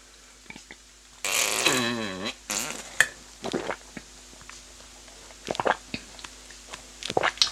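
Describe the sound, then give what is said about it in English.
Loud, gurgling slurps of cashew nut milk drunk straight from a carton: one long warbling pull, a shorter second one, then scattered swallows, lip smacks and soft clicks, with no talking. “sorry for the slurping noises it goes through. It's just because I'm drinking it from the carton.”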